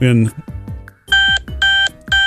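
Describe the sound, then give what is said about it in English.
An insulin pump's urgent low-glucose alarm from its continuous glucose monitor (CGM) sounds as three loud, sharp electronic beeps in a quick repeating pattern, following a brief stretch of voice and murmuring at the start. “Yes, that's called an urgent low. And that's actually 3:34. The pump is making the noise, but that's actually what they call the CGM.”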